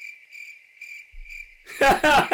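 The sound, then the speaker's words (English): A steady, shrill trill of crickets chirping continuously, fairly quiet and alone at first, then abruptly drowned out by loud human voices near the end. “You denied some crickets making that awkward noise.”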